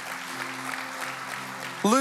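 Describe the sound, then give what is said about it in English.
An audience claps steadily to welcome new people, in a dense, even patter over a low sustained hum, then a voice starts speaking loudly just as the clapping continues at the very end. “Yeah, I love that you want to clap and welcome them.”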